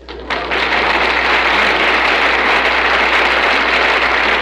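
An audience breaks into loud, sustained applause at the end of a recited Easter verse, a dense crackle of many hands clapping that swells up within the first half second and holds steady without letting up.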